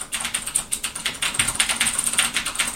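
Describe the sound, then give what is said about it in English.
Rapid, steady typing on a mechanical keyboard, crisp clicky keystrokes in a quick irregular rhythm, moderately loud with no voices. “That's a mechanical keyboard in action.”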